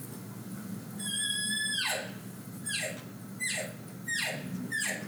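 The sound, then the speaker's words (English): Five cow elk calls made by a caller who controls the pitch with tongue pressure, each a high, reedy whistle that drops off abruptly at the end. The first is drawn out and the rest are shorter, spaced about a second apart over a low steady rumble. “So a cow call starts more at a high note and drops off.”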